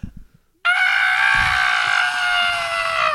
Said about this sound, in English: I'm going to scream and I'm going to hold the place between my legs. I'm going to lay on the ground and scream. Bloody murder.